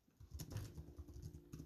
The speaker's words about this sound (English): I hope you guys are enjoying this typing ASMR.